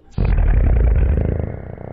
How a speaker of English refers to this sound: That was a slow-mo fart.